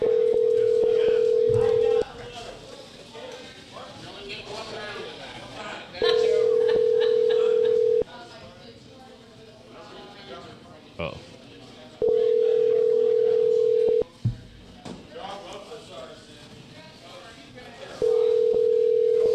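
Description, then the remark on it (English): A steady electronic telephone ringback tone of an outgoing call repeats four times, each burst about two seconds with roughly four-second gaps, loud and clear while people talk quietly in the background between rings. “I guess people don't ever pick up the phone when I call.”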